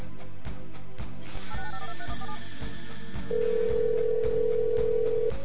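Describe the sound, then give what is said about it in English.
A phone line rings on an outgoing call to a friend, a steady electronic tone cutting in over the second half above a rhythmic music bed, clear, with no one speaking. “Here are a few of the phone calls that happened, just to kind of give you an idea of how it went.”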